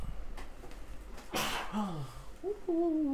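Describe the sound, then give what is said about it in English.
A single sharp, explosive sneeze bursts out over quiet background noise, followed by a few short voiced sounds from someone reacting. “I wonder how loud that sneeze was.”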